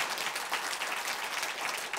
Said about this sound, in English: Now, I'm glad you're clapping.